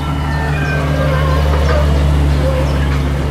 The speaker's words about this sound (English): You know what that is, don't you? It's one of those trains that you find in holiday resorts running people up and down the coast. It looks a bit like a tractor with a load of trailers.